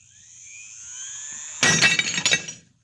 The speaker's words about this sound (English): Watch closely what happens to that glass on the edge of the table. Watch. It's amazing. The glass was shattered.